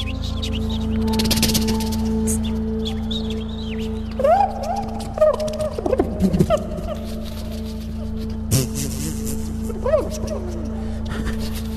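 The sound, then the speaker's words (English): A man whistles sliding, warbling notes and makes clicking, popping mouth noises in short bursts, all over a steady low droning hum, with a few sharper smacks standing out. “When I heard this, I'm like, all right, this is just, he's just making these noises with his mouth.”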